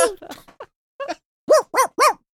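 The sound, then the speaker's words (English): A voice imitates a small dog, starting with a few quick, soft yelps, then three loud, high-pitched yips in an even rhythm, clear with nothing else behind it. “I'm a little dog.”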